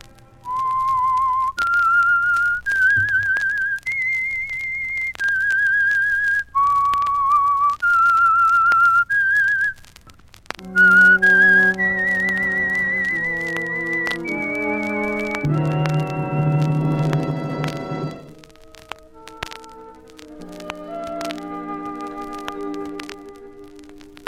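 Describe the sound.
A lone whistled melody introducing the radio mystery The Whistler plays in clear, steady sustained notes that step up and down in pitch for about ten seconds, then gives way to a full orchestral swell with brass and strings.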